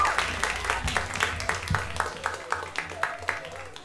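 An audience applauds, a steady patter of many claps with sharp, crisp hits repeating every fraction of a second at moderate loudness, over a faint low murmur of the crowd.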